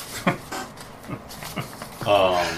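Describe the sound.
A dog sniffs a person's hand in a few short, breathy bursts, then lets out a high, drawn-out whimper near the end. Fairly clear, with faint voices in the background.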